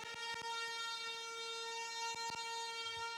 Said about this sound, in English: Now make noise with that trumpet.